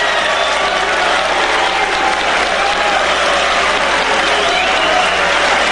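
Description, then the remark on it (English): A large crowd of Ron Paul supporters boos and jeers at a comment by Trump in a loud, unbroken roar that holds steady for the whole few seconds, a dense wall of noise with no single voice standing out. “That's how much booing there was going on.”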